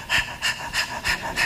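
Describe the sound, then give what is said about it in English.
A person pants like a dog to set a breathing pace for a woman in labor: five quick, breathy huffs in a steady, rapid rhythm, fairly loud, with no talking. “She hears you panting like a dog, and she's supposed to breathe, keeping pace with you.”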